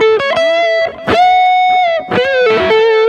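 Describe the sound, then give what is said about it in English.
An electric guitar plays sustained, ringing notes through a Mood delay pedal, each plucked attack trailing into smeared echoes. The tone is loud, with no talking. “all I have is the the harmonizer for the amp. I have the mood delay.”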